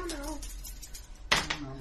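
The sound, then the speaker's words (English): Dice clatter onto a table in two quick, sharp clacks, the first louder, following a faint, wavering voice-like tone at the start; the two dice land on a six and a four. “Right, go for the roll.”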